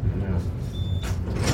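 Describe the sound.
Motorized glass sliding doors at an office reception whir open with a low mechanical hum, a faint whine, and a brief airy swoosh near the end, with soft indistinct voices in the background.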